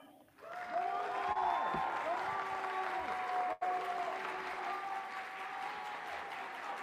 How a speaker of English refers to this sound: They're getting all the claps, all the applause.